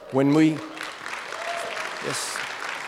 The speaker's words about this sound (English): Yes, go ahead and applaud for her.